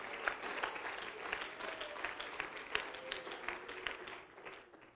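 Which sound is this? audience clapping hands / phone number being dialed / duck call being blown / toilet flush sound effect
audience clapping hands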